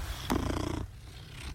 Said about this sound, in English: That is such a good purr.